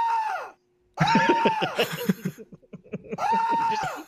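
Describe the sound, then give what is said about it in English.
A man's voice lets out repeated loud, drawn-out screams, three long wails with short choppy laughing yelps between them, strained, imitating a person screaming over and over. “He just keeps screaming over and over again.”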